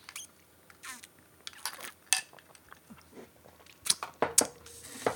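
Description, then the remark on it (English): A string of sharp plastic clicks and clatters, irregular and fairly loud, as a printer's output tray is handled and pushed shut, with no talking. “Sorry, I have to close the output tray on my printer.”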